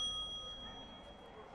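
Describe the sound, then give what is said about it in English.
A payphone, the fourth phone on the east side, rings with a bright, sustained metallic bell tone that holds steady for about a second and a half, fairly quiet over a low background rumble, with no voices. “You said third phone on the east side, not fourth. That's not my call.”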